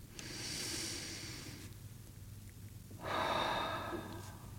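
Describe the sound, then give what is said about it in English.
A slow, deep breath drawn in, a pause, then a long breath pushed out, airy against a low steady hum, with no talking. “So I invite you to grab your compass in your mind's eye or physically, if you have one with you, and join me in taking a breath.”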